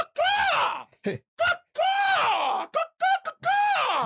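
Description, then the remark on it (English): A person mimics a hawk's cry with a run of loud, shrill screeches. Long, falling calls alternate with a few short clipped yelps, and no speech is heard. “Do Hawks sound like that?”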